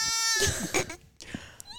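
A sheep bleats in a wavering, nasal cry, followed by a second shorter bleat after a brief pause, close and fairly loud with no talking.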